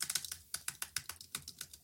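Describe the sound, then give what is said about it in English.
Rapid, uneven typing on a computer keyboard while searching the web, a steady stream of sharp plastic key clicks with brief pauses between bursts, no voices present. “All I'm doing is tapping on my keyboard, Googling frantically to make myself sound cleverer than I already am.”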